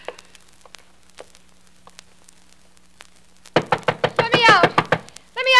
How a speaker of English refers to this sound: Go bang on the door and yell, let me out, let me out. Then the guard will know I'm untied. That's right. He'll come in to investigate, and that's all I want him to do.